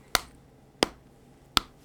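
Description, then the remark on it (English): Three sharp, crisp slaps, made by slapping testicles together as improvised Foley, land at an even, unhurried pace, each a bright smack that dies away quickly, with no voices and only faint background hiss between them. “I'm trying to create a convincing ball slapping Foley.”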